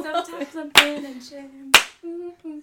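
Two sharp hand claps, evenly spaced about a second apart, ring out over a wordless voice humming or singing a tune.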